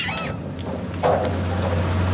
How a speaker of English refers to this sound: As the robotic boat sets off, he putters close behind it, keeping an eye on its progress.